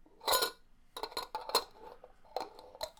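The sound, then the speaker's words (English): A big glass jar used in place of a gym bag being opened: a burst of bright clinks and clatters, then several more sharp, irregular taps of glass and metal over a few seconds, with no voices. “Let me just open that jar.”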